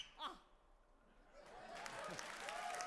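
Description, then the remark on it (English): An audience breaks into clapping about halfway through, a dense, steady patter of many hands that swells and keeps going to the end, following a brief vocal sound and a quiet pause. “clap at that, you assholes.”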